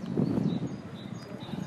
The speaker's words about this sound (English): Can you hear the birds? Sounds cool, doesn't it?